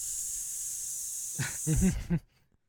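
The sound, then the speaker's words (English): A person imitates a Minecraft creeper's hiss: a steady, bright hissing held for over a second, then tailing off into a few short voiced syllables before cutting to silence. “You're in that house, you just start hearing that hiss, and what do you do?”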